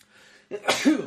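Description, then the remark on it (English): A single loud sneeze bursts out after a brief quiet lead-in, a harsh, breathy blast that ends with a short voiced, throaty tail. “Oh, if this was a real show, I'd have a sneeze button.”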